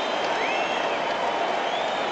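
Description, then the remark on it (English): A large baseball crowd at Wrigley Field comes to its feet with the bases loaded during a Cubs game, roaring and cheering continuously, a dense wash of voices and applause holding steady at a fairly loud level with a few whistles rising above it. “Again, the Wrigley crowd will come to their feet.”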